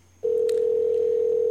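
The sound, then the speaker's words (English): A telephone ringback tone sounds on an outgoing call: after a brief hush, a steady electronic tone switches on abruptly and holds loud and unbroken, with a faint low hum underneath. “Come on, answer the phone.”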